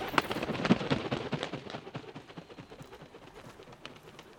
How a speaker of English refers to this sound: I love the sound of grunting koalas. And bird wings flapping.